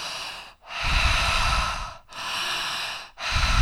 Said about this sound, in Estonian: aga sel hetkel, kui sa viid teda aktiivsesse hingamisse, siis on ikkagi hästi sügavalt suu kaudu sisse, oi, sisse ja välja hingamine. Et avatud suu, lõug vaba ja hingad ikka.